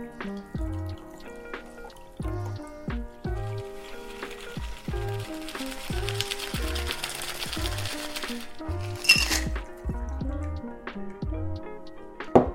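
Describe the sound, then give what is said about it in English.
A Last Word cocktail, shaken with ice, is fine strained into a chilled glass, a soft steady trickle of liquid that swells in the middle and ends with a brief splashy burst, under upbeat background music. “Now we just fine strain into our chilled glass.”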